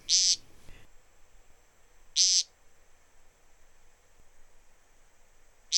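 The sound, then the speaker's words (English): Harsh, buzzy, throaty peent calls from a displaying woodcock on bare moss repeat about every two seconds, three short nasal bursts standing out clearly against a quiet night background. “He flies in low from some neighboring thicket, alights on the bare moss, and at once begins the overture, a series of queer, throaty peents, spaced about 2 seconds apart and sounding much like the summer call of the nighthawk.”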